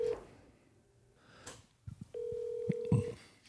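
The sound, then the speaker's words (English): A telephone call being placed for a prank call: a brief tone and a few soft clicks, then a steady mid-pitched ringback tone that holds for about a second, with no one speaking. “Let's see if he answers.”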